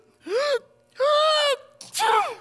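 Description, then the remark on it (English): Three sneezes in a row, each a loud voiced burst with a rising-then-falling pitch. The last one bursts out sharper and noisier. No one speaks between them. “Bless you. Again.”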